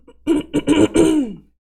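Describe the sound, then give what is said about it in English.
A person clears their throat in a quick series of rough, voiced rasps, ending in a longer grumbling sound that slides down in pitch before stopping. No words are spoken. “Excuse me, I have a frog in my throat.”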